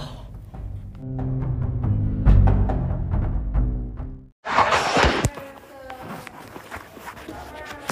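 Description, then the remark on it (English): A steady series of thudding footsteps, about a dozen impacts in an even rhythm as someone climbs a staircase on the south side of a building, followed by a sudden shift to louder, rougher noise. “You caught me at a time where I am going up the obscure staircase of nowhere.”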